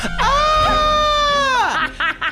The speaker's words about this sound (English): A scream.